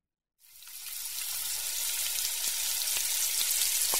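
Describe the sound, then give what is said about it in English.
Steady sizzling of French fries frying in hot oil, a dense crackle with scattered pops that starts abruptly and holds constant for a few seconds, no voices. “This is frying chicken. Or French fries.”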